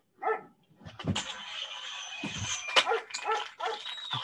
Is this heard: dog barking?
yes